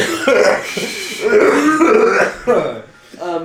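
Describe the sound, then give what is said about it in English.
A voice imitates a dragonborn coughing and clearing its throat into a bed in a series of rough, raspy hacks, strained and uneven, with a brief pause before a final burst. “Does the bed, like, do you open the fridge and it's just a dragonborn, like, coughing into a bed?”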